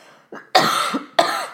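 Two harsh coughs in quick succession, the first preceded by a short throaty intake, with no talking around them.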